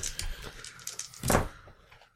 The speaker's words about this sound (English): Roll that roll. Roll all those dice.